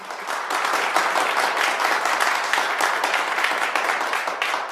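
An audience applauds steadily for several seconds to thank a speaker at the end of a talk, a dense wash of overlapping hand claps at an even, sustained loudness with no voices standing out.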